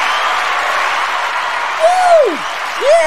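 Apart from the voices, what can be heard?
crowd cheering and applauding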